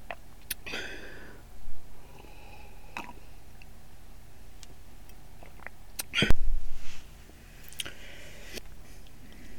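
Quiet sips from a cold glass of milk with soft wet mouth clicks, then a louder gulp and swallow near the end. No one speaks.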